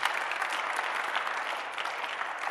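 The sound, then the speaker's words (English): A crowd claps steadily for a couple of seconds, a dense, even wash of many hands with no voices standing out. “Oh, you should be clapping there.”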